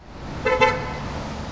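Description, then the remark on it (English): City street traffic on Fifth Street between Broadway and Hill in downtown Los Angeles, with commuters leaving the Pershing Square metro stop: a steady rumble of passing cars, broken by a short double honk of a car horn near the middle, loud. “In downtown LA, Fifth Street between Broadway and Hill buzzes with the sound of passing cars and commuters leaving the Pershing Square metro stop.”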